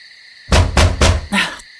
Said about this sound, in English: Dude, you better not be banging on the walls like that.